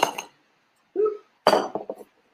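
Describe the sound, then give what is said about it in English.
Crushed ice clinks and rattles into a glass in a few separate bursts, fairly loud, with bright crackly tinkling and short pauses between pours, as the glass is iced for a drink. “We are going to do a little bit of crushed ice that I brought here.”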